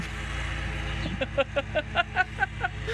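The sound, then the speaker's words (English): A lawnmower, as someone mows their lawn, drones steadily in the background, a low, even engine hum throughout, while a voice breaks in halfway with a quick, rhythmic run of short bursts over it. “Isn't it funny how lawnmowers are so loud when you're trying to record?”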